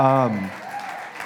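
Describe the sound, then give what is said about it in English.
A large audience claps in a dense, steady wash of applause for the production crew, after a brief moment of a voice speaking at the start. “I think they have it up on the screens, which, can you all give a round of applause for the production guys?”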